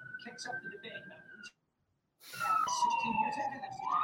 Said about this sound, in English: Yeah, it's starting to snow. That's why all the ambulances and police cars, yep, and everything are going everywhere. You know, people are already messing up, getting into accidents.